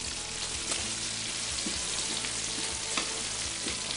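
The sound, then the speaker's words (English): Bacon grease sizzles and crackles steadily in a pan, a dense hiss broken by a few sharp pops and scraping clicks as it is stirred. No one speaks. “So I'm going to take a little bacon grease and throw it in there. All right, stir it up here.”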